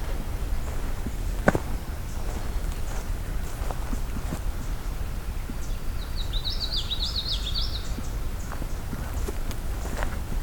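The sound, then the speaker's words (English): A common yellowthroat warbler sings one quick, rolling phrase of repeated high notes in a wet area, over steady footsteps and outdoor rustling. “Common yellow throat's getting a little more active now.”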